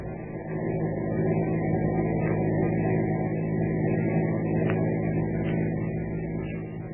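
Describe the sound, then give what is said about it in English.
A car engine hums steadily as the car drives along following a truck, a continuous low rumble at constant volume with no voices, broken only by a couple of faint clicks. “Keep on the tail of that truck. Right, sir. Not too close.”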